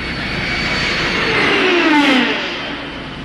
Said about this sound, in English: Enemy plane, sir? Impossible. No plane can fly that fast. That looked to me like it was from another planet. I have to agree, sir. It did look like it was from another planet.